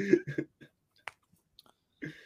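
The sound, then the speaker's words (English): Mouth sounds of someone chewing crispy food: a few short, sharp crunches spaced apart, surrounded by brief voiced murmurs and smacking noises, fairly quiet overall. “I wonder what that crunching was.”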